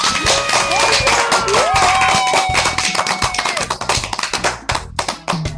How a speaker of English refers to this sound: Thanks for all that applause